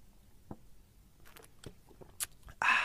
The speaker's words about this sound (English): Whether you're drinking coffee, tea, or orange juice, take a sip.